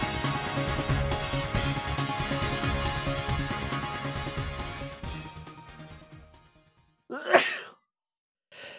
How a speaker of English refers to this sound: Sorry. I sneezed once earlier and I was like, where's the other one? And then it multiplied in my nose.